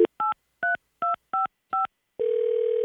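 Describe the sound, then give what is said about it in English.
A quick series of six or seven sharp touch-tone beeps as a number is keyed in to call a woman for the first time to set up a first date, followed by a steady, continuous phone tone that carries on to the end. “So now I'm calling her for the first time to set up our big first date.”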